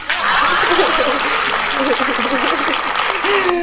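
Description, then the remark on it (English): A crowd applauds loudly and steadily for a few seconds, a dense wash of clapping with a few voices whooping and laughing mixed in. “Please clap.”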